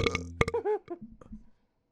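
A loud, close-up burp into the microphone, opening with a few crackly bursts and then rolling into a drawn-out, gurgling belch that fades after about a second and a half.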